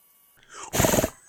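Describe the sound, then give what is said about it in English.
A disgruntled horse noise made by a person: a short, rough, sputtering blast with a rapid fluttering pulse, swelling quickly and then cutting off after about half a second, with no talking around it. “The noise of a disgruntled horse?”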